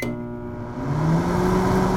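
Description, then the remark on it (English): A steady electric hum of a microwave oven running, a rectangular box with a door and buttons, heating food, with a low droning tone that swells slightly partway through and holds constant, fairly loud with no talking. “Microwaves are like little electric ovens that cook and heat up food.”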